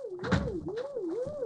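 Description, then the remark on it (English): A steady electronic tone warbles slowly up and down in pitch, a sci-fi effect of disturbed brain delta waves, with a soft rumbling hum and a few faint clicks underneath and no voices. “You hear that? Delta waves. Seems disturbed.”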